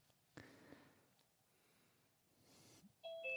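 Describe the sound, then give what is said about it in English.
A loud two-note electronic ding-dong chime, stepping down in pitch, as someone joins an online call, sounding at the very end after a stretch of quiet background hiss with a couple of faint clicks. “Ding dong.”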